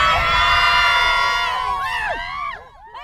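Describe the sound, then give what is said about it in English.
A sports team screams and cheers together at full volume, a sustained loud yell with rising and falling whoops near the end. “Let me hear you scream!”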